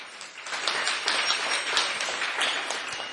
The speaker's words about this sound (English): and we'll give him his gift later, but you can give him a big round of applause.